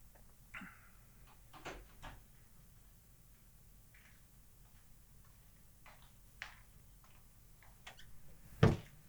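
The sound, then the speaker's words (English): A door is shut all the way with a single sharp thud near the end, following several seconds of quiet room tone scattered with faint clicks and light ticking. “We close that door all the way.”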